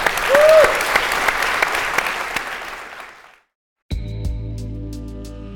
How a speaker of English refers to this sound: I'm going to applaud that, actually.